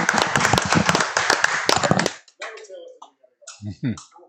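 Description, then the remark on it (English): A studio audience gives a round of applause: about two seconds of dense, rapid, fairly loud clapping that cuts off abruptly, followed by a few moments of talking. “The studio audience, give you guys a round of applause.”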